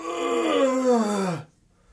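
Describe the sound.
A person performs a single drawn-out yawn of someone waking and sitting up, a voiced groan sliding steadily downward in pitch for about a second and a half before cutting to silence.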